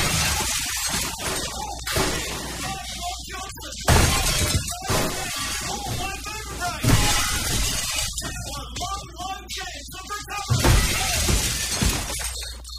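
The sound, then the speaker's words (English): Loud glass shattering in several crashing bursts, with scattered tinkling shards and a metal hubcap rolling and wobbling around between the smashes, fairly loud. “there's a nice tinkle at the end. I want to hear it. There's a hubcap rolling around.”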